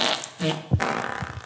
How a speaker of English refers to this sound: I know that every time Jimmy drops farts in, I laugh.